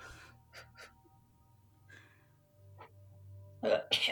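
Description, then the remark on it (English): Quiet hum with a few soft gasping breaths, then a woman who has just taken a shot of a drink bursts out with a pair of loud, harsh coughs at the end. “Says the girl who has to get all amped up and then coughs to death after.”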